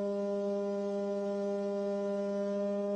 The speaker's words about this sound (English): the iConk, you know, the conch shell. And no buttons, no apps, no email capabilities. Just a good old iConk where I can call my friends and they know the sound of my blow. And I know that sounds weird, but they know the sound of my conch blow.